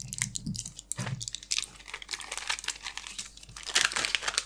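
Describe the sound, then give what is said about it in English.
Crackly crinkling of a foil blister pack of ibuprofen as pills are pushed out, a steady run of sharp plastic rustles and small pops with no talking. “Do you have any ibuprofen? Yeah, I do. Can I borrow some, please?”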